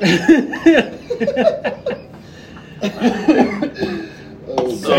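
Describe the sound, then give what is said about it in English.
A run of harsh coughs breaks out in uneven bursts, tangled with voiced chuckles and breathy laughter, then a few more sharp coughs near the end. “No, I keep coughing up fucking Satan's damn.”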